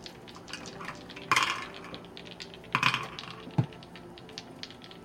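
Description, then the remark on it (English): Several dice rattle and clatter onto a hard surface as players roll initiative in a tabletop game, with two louder bursts of tumbling and a sharp click, amid faint background murmur. “Our non-sleeping people do get to roll initiative.”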